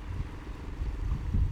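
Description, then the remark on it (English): A low, uneven engine rumble from small boats sputtering off across open water on a sunny day at Malapascua Island as divers return to their resorts, steady throughout with a faint wash of wind and waves behind it. “Children play in the shallow waters and small boats sputter off as divers return to their resorts.”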